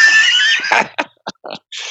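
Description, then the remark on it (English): A person gives a loud whinnying imitation of a horse, a strained high-pitched bray that breaks into several short choppy bursts before one last drawn-out squeal. “I'm a horse.”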